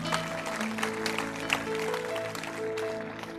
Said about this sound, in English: Give the Lord a clap for that.